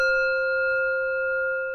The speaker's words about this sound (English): From time to time, you will hear a chime.